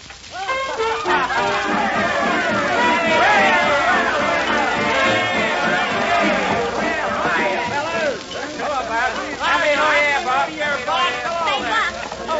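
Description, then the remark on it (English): A crowd of people in a parlor chattering and laughing at once, a steady, dense babble of many overlapping voices, with no single speaker standing out. “come in the parlor, Buck, where the crowd is”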